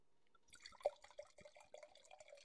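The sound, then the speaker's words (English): A drink being poured into a glass, a steady gurgling splash of liquid lasting a couple of seconds, with no talking over it. “I gotta pour it up again.”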